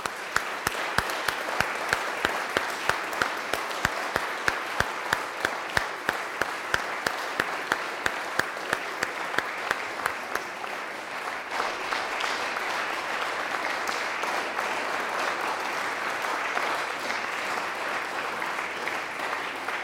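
An audience claps in a steady, rhythmic unison beat for about ten seconds, then breaks into a dense, continuous round of applause from a large crowd that carries on to the end, sending off a choir as it leaves.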